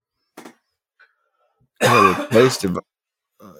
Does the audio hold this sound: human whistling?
no